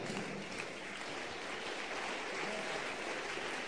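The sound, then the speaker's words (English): An audience claps steadily, a dense, even patter of many hands that holds at a constant moderate level for the whole stretch, with no voices standing out. “I don't know why they are clapping.”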